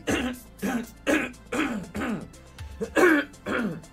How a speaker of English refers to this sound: Excuse me. I had one of those things where, like, every time I would clear my throat, I would, like, get, like, a mini hiccup. So I could not effectively clear my throat.